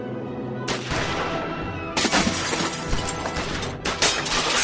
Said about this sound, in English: Monk Savage and his gang poured round after round of flaming lead into the darkened house where the Lone Ranger and Everett Barnes crouched on either side of the shattered window.